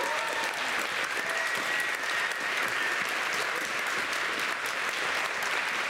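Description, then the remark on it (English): Steady audience applause for the two people who lead their trips in Swaziland as they stand up, a dense wash of many hands clapping at an even, fairly loud level with no break and no voices rising above it. “Yeah, give them a big round of applause, you guys.”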